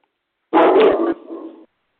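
A single loud dog bark followed by a shorter, softer trailing yelp or whine, with silence before and after.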